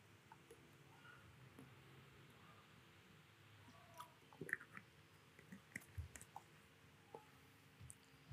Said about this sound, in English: Just let me have a drink of water.